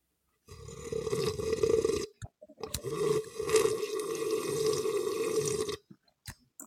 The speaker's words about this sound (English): If you have your coffee mugs, your travel mugs, your sippy cups, your doggy bowls, if you have a beer hat, you want to drink it like that, then go ahead and do so. And join us in this sip of a 2024 cafecito.